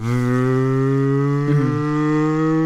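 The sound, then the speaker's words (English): A voice imitates a car engine revving with a steady, low, buzzy hum rich in overtones, a brief upward wobble in pitch midway, held for nearly three seconds. “Black screen. Okay. You just hear a car revving.”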